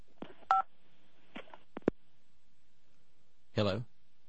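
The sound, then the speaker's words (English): A single short phone keypad beep rings out as a baby grabs the phone and presses its buttons, followed by a few clicks and bumps of handling, then a brief vocal burst near the end. “He's grabbing the phone. He wants the phone.”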